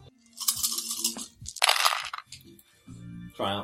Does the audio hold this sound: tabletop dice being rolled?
yes